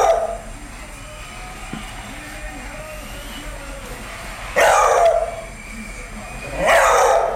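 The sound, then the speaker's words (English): A beagle barks loudly, three drawn-out, baying barks spaced several seconds apart, with faint whining and background noise filling the gaps between them. “Okay, so it's actually a beagle.”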